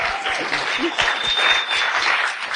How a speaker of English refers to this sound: And we're all proud of you. Clap to tell him that you're proud of him.